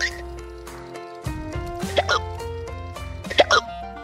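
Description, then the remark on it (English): Several sharp hiccups pop out in pairs, two near the middle and two more toward the end, standing out clearly over a steady, sustained musical tone underneath. “Very rarely, people can hiccup for months.”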